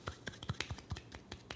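A soft golf clap: about nine light, quiet hand claps at a steady, unhurried pace, each a short dry pat, with no voices over them.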